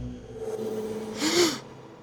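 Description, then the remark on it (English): A single sharp gasp from a man as he opens his eyes, a quick, breathy intake of air with a brief voiced catch, heard alone against a faint low hum. “When he opened his eyes, he gasped.”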